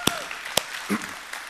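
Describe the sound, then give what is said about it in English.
An audience at North Star church gives God a praise clap, with two sharp, loud claps standing out over a steady wash of quieter applause and a brief murmur of voices. “If you believe that, give God a praise clap today.”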